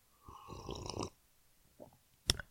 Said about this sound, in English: Sip of coffee before I get into this.